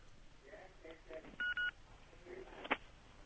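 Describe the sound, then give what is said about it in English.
Two short electronic keypad tones from a phone being dialed to call back after the line cut out, each a steady dual-pitch beep, followed by a sharp click, with faint voices murmuring in the background. “I'll call you back.”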